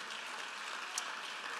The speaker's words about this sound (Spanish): Denle un fuerte aplauso al Señor con todo el corazón.